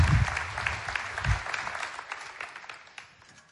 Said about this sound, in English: I've never had applause stepping up to here, and I've never stood here on this stage without a guitar in front of me, so hang with me.